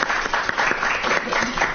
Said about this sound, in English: Let's give her a round of applause.